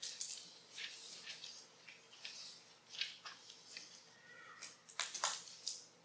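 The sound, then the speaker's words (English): Scattered pen clicks from listeners underlining Bible verses during a sermon sound quietly and irregularly, a dozen or so short sharp snaps overlapping, with no one talking. “Oh, I love to hear the clicking of the pens.”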